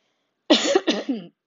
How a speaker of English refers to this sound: Excuse me, I'm clearing my throat.